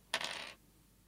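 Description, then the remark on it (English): A short clatter of dice rolled for damage, tumbling across a hard tabletop, a bright rattling burst that lasts under half a second and then settles into quiet. “Okay, so now I roll for damage.”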